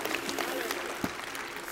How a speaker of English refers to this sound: Give God a good clap of praise, would you? Give God a good clap of praise. Hallelujah.